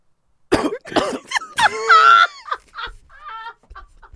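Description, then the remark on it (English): A person lets out a rapid series of sharp, throaty coughs, some with a strained, squawking tone, trailing off into softer sputters. “You start coughing during sex.”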